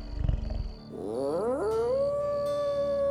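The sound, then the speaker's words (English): A deep, rumbling growl gives way to a long, rising howl of a werewolf howling at the moon that climbs in pitch and then holds a steady, sustained note, loud, with no talking. “Guzman howled at the moon and ran through the brush like something born in perfect unity with the Monty.”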